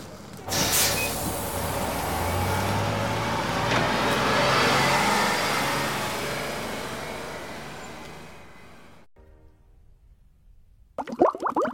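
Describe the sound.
The engine of the Men in Charge bus runs with a steady, broad rumble that swells and fades over about eight seconds, then cuts off abruptly before a brief burst of voice at the end.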